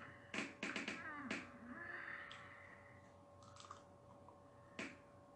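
A cat gives a short, drawn-out meow amid several sharp finger-snap-like clicks, with a faint steady hum in the background and no talking.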